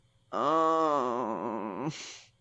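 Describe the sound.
A voice imitates a long, loud groan, holding a low, wavering moan for over a second before it breaks off into a breathy exhale. No other sounds accompany it.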